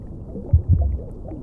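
A muffled, deep underwater ocean ambience: a steady low rumble with all the brightness filtered out, broken by two soft, heavy thuds in quick succession.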